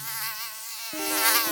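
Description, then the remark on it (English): A mosquito whines, a thin continuous buzz that wavers in pitch and grows slightly louder over a second and a half, with no voices. “We all know inflammation from when we get a mosquito bite.”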